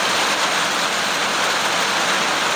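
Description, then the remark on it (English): Heavy rain starting up again pours down in a steady, dense hiss that grows louder and fills the whole clip, with no voices or breaks. “And the rain's starting up again, getting louder again.”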